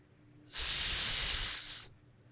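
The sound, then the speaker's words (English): A voice hisses one long, steady "sss" lasting over a second, voicing a movie title made of seven S's, bright, starting and stopping cleanly with silence on either side. “That's 7 S's, and that's the title.”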